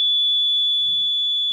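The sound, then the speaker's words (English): A water leak alarm blares a loud, piercing high-pitched electronic tone, held steady for the whole moment, with a faint low bump partway through and no one talking. “Yeah, folks, have you never heard the water alarm?”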